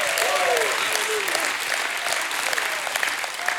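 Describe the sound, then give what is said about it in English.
An audience bursts into steady, dense applause that fills the whole stretch, with a few raised voices calling out over the clapping near the start, giving a hand clap and a shout of praise to Jesus Christ. “If you got hope, you ought to give him a hand clap and a shout of praise.”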